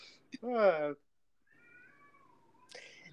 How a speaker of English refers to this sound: That's a vocal cat you got.